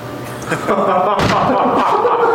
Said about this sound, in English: if you will, please close the door.